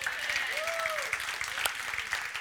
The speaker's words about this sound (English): You ought to clap right there.